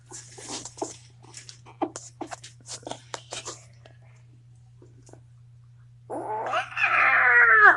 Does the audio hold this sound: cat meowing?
yes